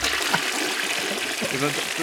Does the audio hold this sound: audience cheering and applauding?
no